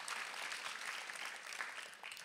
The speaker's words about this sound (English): Come on, every campus. Come on, West Side, clap with us.